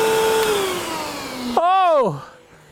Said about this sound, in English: Vacuum cleaners, mobile phones and budgies are not a very good mix. And so, and I'll try not to make it go for too long, she was vacuuming and she was looking the other way and not paying attention.